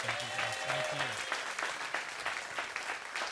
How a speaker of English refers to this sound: can we give a long, awesome, warm round of applause for Kyle Winkler?